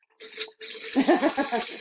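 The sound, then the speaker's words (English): Wine pours steadily into a glass while being aerated, a bright hissing stream with a short break, then fuller gurgling glugs as the glass fills. No one speaks. “And if anyone's hearing that, I'm aerating. Oh shit, I just did a big glass.”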